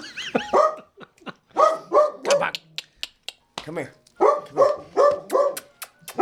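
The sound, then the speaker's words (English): A dog named Mozzie barks repeatedly, loud, high-pitched yaps coming in quick bursts of two or three, with brief pauses between the clusters. “Not bark.”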